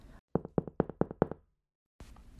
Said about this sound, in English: I hear a knocking on my window, and I quickly dry my eyes.